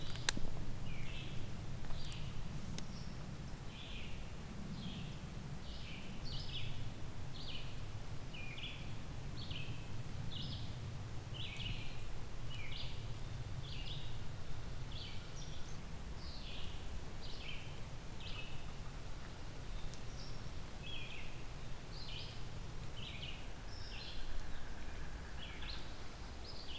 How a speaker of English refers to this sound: Yellow-billed cuckoo.